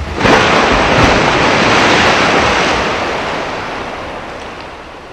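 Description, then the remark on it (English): A loud, continuous roar of crashing ocean surf as a comet strikes the ocean, with a broad rushing wash of water, surging in strongly at the start and slowly easing off over several seconds; no voices. “All anyone could see was shadow and fire as the heavenly object, a comet no less, struck the ocean.”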